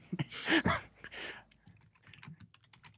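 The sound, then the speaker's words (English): Rapid, clattering keystrokes from a mechanical keyboard, a dense burst of loud clicks early on that thins into lighter, scattered tapping, with no voices. “they have that mechanical keyboard in the back.”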